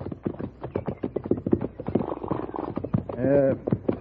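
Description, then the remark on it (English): Horses' hooves clip-clop in a steady, brisk rhythm throughout as two riders travel on horseback, with a short horse whinny rising near the end. “We can water the horses and rest a spell if you like.”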